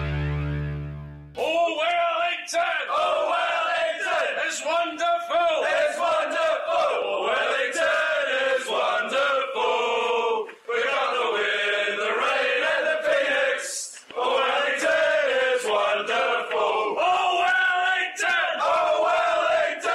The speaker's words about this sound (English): One of the few Phoenix chants from the Yellow Fever that is airable on this radio station there.